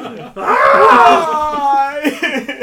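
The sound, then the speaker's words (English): A loud, drawn-out scream from one voice, rising and then sliding down over about a second and a half, followed by a few breathy, laugh-like sounds. “I will edit out the screams.”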